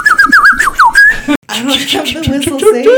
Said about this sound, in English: I don't have the whistle saved. Future …, can you add the Northside whistle, please?